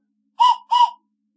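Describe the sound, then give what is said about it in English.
Two short, breathy toots from a toy train whistle, fairly loud, each lasting about a quarter second with a brief gap between, airy and slightly harsh in tone. “I have a train whistle.”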